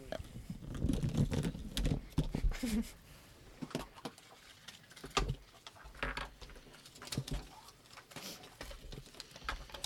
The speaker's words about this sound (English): A lot of rustling.